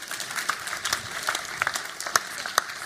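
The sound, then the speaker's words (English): A modest round of applause from an audience, a thin patter of many hands clapping steadily with a few sharper claps standing out, fairly subdued and with no voices. “Give yourselves a big old round of applause.”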